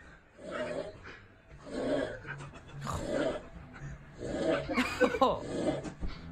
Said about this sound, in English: Somebody put a link to this this dude snoring, and there's a bunch of guys clearly like a frat house, or they're having a house party. Who knows how long ago this was? But their buddy passes out.